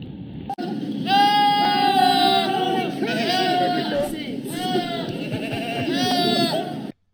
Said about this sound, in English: Goats do scream, by the way. They sound almost human, and this could be loud.